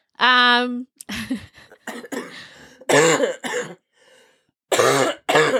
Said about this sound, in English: Are you coughing okay?